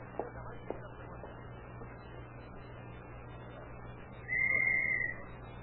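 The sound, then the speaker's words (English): A single sharp whistle blast, blown as a signal during a chase, steady in pitch and lasting about a second, cuts in loudly near the end over a constant low background hum. “He went right through that glass door when you blew that whistle.”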